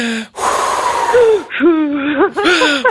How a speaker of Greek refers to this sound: για να σε βοηθήσω στην εγκυμοσύνη σου, να παίρνουμε μαζί ανάσα από το τηλέφωνο. Είμαι μέος. Είμαι γραμμή υποστήριξης. Να πω πώς θα με βοηθήσεις. Θα παίρνουμε μαζί ανάσες. Είμαι γραμμή υποστήριξης εγγύων. Ωραία, λοιπόν, μία εσύ, δύο εγώ. Ωραία, πάμε.